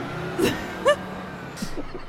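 A bus rumbles low and steady while three short, sharp hissing bursts like air brakes cut through, along with a couple of brief high yelping cries.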